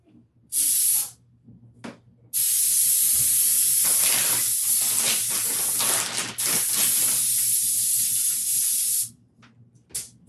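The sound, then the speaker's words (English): Cooking spray hisses from an aerosol can onto a baking pan for fries in a short burst, a brief pause, then one long steady spray of several seconds, loud, with no talking. “First, we're going to take the pan and spray it with pan.”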